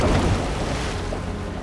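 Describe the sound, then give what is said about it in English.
A steady, rushing roar of water falling from a dark waterfall at the foot of craggy cliffs, dense and low-heavy, holding an even loudness throughout with no voices or breaks. “Psyche followed it down the craggy cliffs until they reached the mouth of a dark waterfall.”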